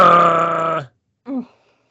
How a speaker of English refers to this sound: Give me 1 second. I need to blow my nose.